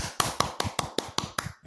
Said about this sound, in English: Please do help me clap for them. Let me clap for them.